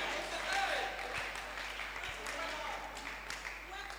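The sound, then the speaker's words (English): A church audience claps their hands in a dense, steady patter that fills the room, with indistinct voices mixed in beneath the clapping. “Now your hand clap is gone down.”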